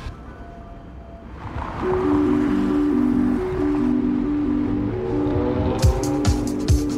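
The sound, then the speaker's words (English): A food truck's engine rumbles and builds as it pulls away amid outdoor traffic noise, with a steady droning tone sliding between pitches and a few sharp clatters near the end. “And they're off.”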